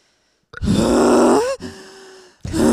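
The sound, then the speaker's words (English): A person performs exaggerated heavy breathing: two long, loud, groaning huffs, one after another, with a third starting at the end. No speech. “You do the heavy breath.”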